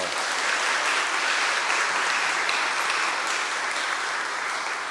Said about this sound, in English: Yesterday was a beautiful service. An applause again.